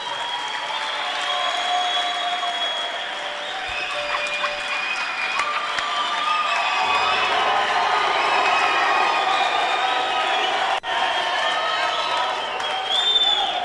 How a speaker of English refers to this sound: So clap your hands for him.